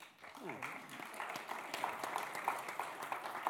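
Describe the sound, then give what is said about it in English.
Sparse, half-hearted clapping from a small crowd, a handful of soft, uneven claps scattered over a few seconds beneath a low murmur of voices, with a brief vocal sound at the start. “Which led to them to being the most least enthusiastic clap I've ever heard in my life.”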